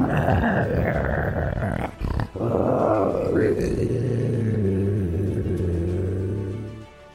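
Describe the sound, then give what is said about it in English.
A low, sustained creature growl rumbles steadily, with rough scrabbling on stone mixed in, briefly broken by a sharp gap before the snarling continues and fades out. “However, you also hear scrabbling on stone, and you hear a growling.”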